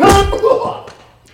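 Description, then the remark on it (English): A single heavy stomping thud, a stomp to the groin in a self-defense move demonstration, lands at the start, low and forceful, with a shout or grunt over it before the sound fades into quiet. “And, of course, from that position, we can easily re-stomp the groin.”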